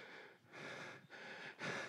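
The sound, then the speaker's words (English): Heavy, labored breathing of a preacher during a sermon, with three loud rushing breaths in a steady rhythm, each separated by a brief pause, and no talking. “I'm breathing hard because it is stir inside of me.”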